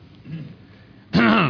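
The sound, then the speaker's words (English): After a second of near-quiet, a man clears his throat once: a short, loud, gruff rasp that cuts off abruptly. “He was just clearing his throat, but you're here.”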